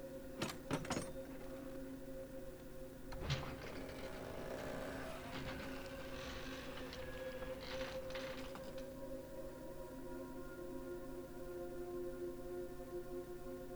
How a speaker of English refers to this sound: The door isn't locked, so the handle opens easily.